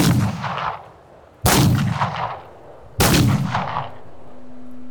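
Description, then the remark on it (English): A firing squad fires three loud gunshots one after another, about a second and a half apart, each a sharp blast followed by a long rumbling echo. No one speaks. “The guns call out their response one after another, bang, bang, bang.”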